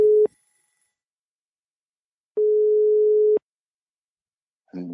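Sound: telephone ringing tone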